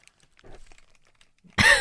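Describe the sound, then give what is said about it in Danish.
Soft rustling and faint crinkles, like food being lifted from its wrapper, then a sudden loud bite into a burger with patty, bun, raw onion, pickles and ketchup, with a wet crunch and muffled chewing at the end. “Jeg kan sige til lytteren, der tager du en ordentlig bid.”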